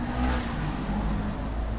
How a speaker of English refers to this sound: It's amazing that we can hear traffic even though we're still on level 3, albeit the last day.